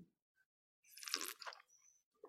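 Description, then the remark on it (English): A single slurping sip of coffee, a wet, airy burst lasting about a second, followed by a softer swallow, with no talking during it. “Excuse me while I have a sip.”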